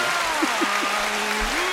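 A burst of canned applause from a sound-effect button: a steady, dense wash of crowd clapping at even loudness throughout, with a few faint whistle-like tones mixed in.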